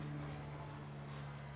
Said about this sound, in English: Hold for helicopter.